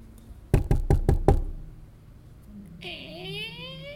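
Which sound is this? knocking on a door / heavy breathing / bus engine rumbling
knocking on a door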